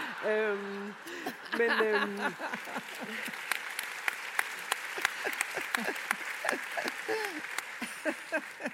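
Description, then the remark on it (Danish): An audience claps steadily for several seconds, a dense patter of many hands with a few sharper individual claps, while voices talk over it. “Det er meget fedt det med at have et publikum, der bare klapper, når man siger noget.”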